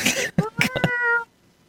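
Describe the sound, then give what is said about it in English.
A cat meows close to the microphone: a few short, breathy chirps lead into one drawn-out, tonal meow that stops abruptly, followed by near silence. “Jesus, his cat is better mic'd than Kaz.”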